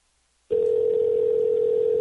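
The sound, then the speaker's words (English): After half a second of silence, the ringback tone of an outgoing phone call starts: a steady, clear electronic hum that holds without a break, with no one speaking. “They're letting it ring 20 times.”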